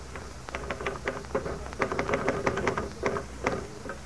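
Rapid, uneven clacking of typewriter keys, a steady stream of sharp mechanical clicks with occasional heavier strikes, going on without pause and with no voices.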